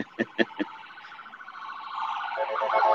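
ambulance siren passing by

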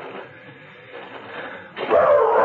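small dog barking

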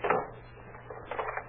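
door being locked

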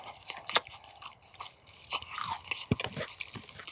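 chewing food

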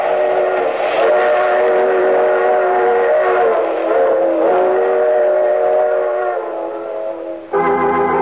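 train running with whistle

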